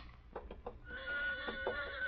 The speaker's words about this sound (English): Yeah, that's my horse. He heard something.